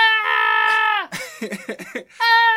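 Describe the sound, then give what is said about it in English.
A person screeches in a loud, sustained, high-pitched wail that dips at its end, lets out a few choppy vocal yelps, then launches into another long shrill screech. “Do you care to tell me why you're screeching?”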